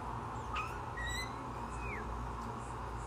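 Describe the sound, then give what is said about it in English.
Several short, thin bird chirps and whistles ring out from a tree in a backyard over a steady outdoor hiss, spaced irregularly with no voices present. “Not only does it shade us and the house, it absolutely takes care of the birds. You hear them?”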